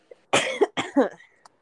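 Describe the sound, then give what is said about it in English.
Two harsh coughs in quick succession, each a burst of raspy breath with a slight voiced tail, loud and clear with nothing else around them. “No, like, you coughing reminded me, okay?”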